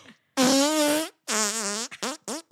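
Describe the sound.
A person blows wet, buzzy fake fart noises into their forearm: two long, wobbling raspberries followed by a quick string of shorter sputters, fairly loud.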